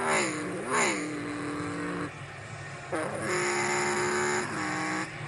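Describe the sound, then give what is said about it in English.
Roaring NASCAR Cup Series stock car engines at a race in Texas, with sustained high-pitched whines that rise and fall in pitch as cars speed past, loud, one pass after another over continuous track noise. “Full Race Replay/ The Nascar Series Texas GP”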